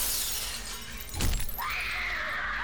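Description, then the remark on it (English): A 10th-story glass window of the Statler Hotel on 7th Avenue shatters with a sudden sharp crash, followed by a bright ringing tone as shards settle; the impact is loud, set against a steady background hiss. “Then suddenly, he heard a shattering of glass from the 10th story window above his head.”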